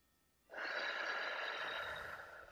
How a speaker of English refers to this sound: But basically you want to inhale for 4 seconds. So picture it like a box. So inhale 4, hold for 4, breathe out 4, pause for 4.